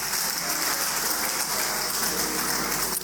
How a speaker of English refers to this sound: Can you clap for this contributor?